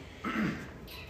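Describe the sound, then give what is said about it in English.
A single short sneeze, a quick breathy burst that rises sharply and fades within half a second, heard on its own with no talking. “Bless you.”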